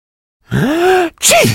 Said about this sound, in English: In fact, this is what to say when someone sneezes near to you.